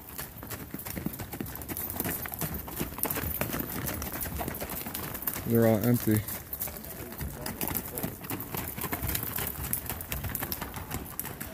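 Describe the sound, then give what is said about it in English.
Mules' hooves clip-clop steadily down a trail, a dense, continuous patter of hoofbeats. A brief voice speaks over it, and a short tonal sound rises midway. “Well, these are mules, I think. They're mixed with a horse and a donkey.”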